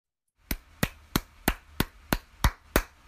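A steady run of about nine sharp, bright smacks of a paddle striking a ball, a sound effect played through a door in a TV scene, evenly spaced roughly three per second, each crisp and loud with no voices.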